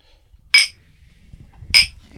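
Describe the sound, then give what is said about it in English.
Glasses clink together twice in a toast, two bright ringing taps about a second apart, fairly loud against a faint low rumble. “Cheers. That's it.”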